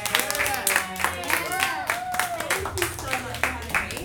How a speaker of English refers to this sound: Should we all give her a big round of applause?